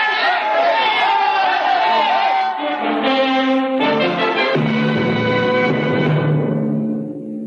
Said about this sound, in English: Riker and Aelin ran down the long steel corridor with the crowd on their heels.